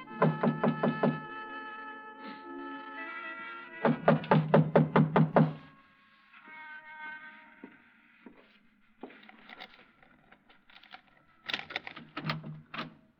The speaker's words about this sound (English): I tried the front door, but it was locked. I didn't think anyone would be there that late, but I knocked anyway.